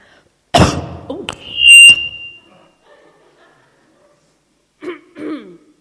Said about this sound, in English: I've got a cough, I'm sorry.